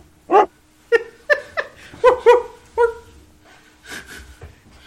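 A dog sound effect: around seven short, yelping barks in a quick, uneven burst, fairly loud, trailing off into a couple of fainter breathy sounds.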